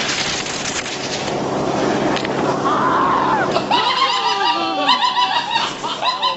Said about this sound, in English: he goes like the thing smacks him in the nuts because he cuts it short, and the guys definitely scream at this.